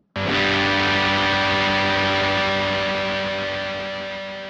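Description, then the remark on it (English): A single electric guitar chord played through a distortion effect strikes hard and rings out with a thick, buzzing, saturated tone, sustaining loudly and fading only slightly over several seconds. “And one of my favorites, a very recognizable tone, distortion.”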